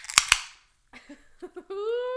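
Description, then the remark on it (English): Two Diet Coke cans pop open in quick succession, each a sharp crack followed by a brief fizzing hiss, then a pause before voices and laughter come in. “Should we open our Cokes?”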